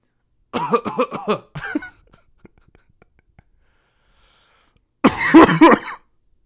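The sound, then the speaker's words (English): A voice imitates the dry, hacking cough of a man sitting next to the speaker at a John Wick 4 screening, in a few quick rough bursts, then falls quiet for several seconds before one more short throaty cough burst, fairly loud. “Kid you not, like, the guy next to me, who just, he just had the dry cough of being like, yeah.”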